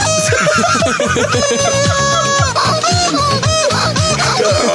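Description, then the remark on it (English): Chicken clucks pitched up and down to carry a catchy pop tune, layered over a steady pounding beat; loud, continuous and upbeat, with no talking. “You've all been Rickrolled by a chicken.”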